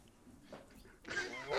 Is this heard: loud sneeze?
no